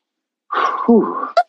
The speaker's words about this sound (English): Whew. I had a sneeze.